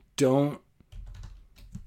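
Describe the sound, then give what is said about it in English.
A short voiced hum opens, then a second or so of quick, steady keystrokes as someone types a password on a computer keyboard, moderately soft. “Hang on, I have to type my password to my computer.”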